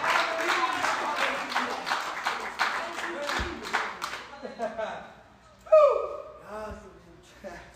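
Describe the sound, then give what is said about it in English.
A church audience claps together in a dense, steady burst of applause for about four seconds, then the clapping fades out and a single voice begins speaking. “Would you clap your hands?”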